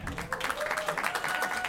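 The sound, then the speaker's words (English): A small group in the room claps, a dense patter of overlapping hand claps at steady moderate volume, with faint murmured voices underneath. “Wait, so are you applauding because you're A&M fans or happy that A&M lost to like the SEC's worst quarterback?”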